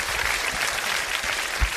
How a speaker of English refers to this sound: Okay, I was like, can we get another applause drop too?